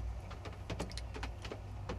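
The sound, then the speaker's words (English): Steady rain with an irregular patter of drops tapping over a soft, continuous wash and a low hum underneath; no one speaks. “The background noises today, or I should say soothing sounds, come from a steady rain here.”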